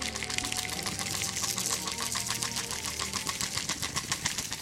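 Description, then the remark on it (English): Dice rattle and clatter steadily for several seconds as a dice ASMR segment for the show Campaign Chaos, a rapid, dense stream of small hard clicks, fairly loud, with no voices. “Right, are we ready to dice ASMR? Get out to your dice! It's time to ASMR.”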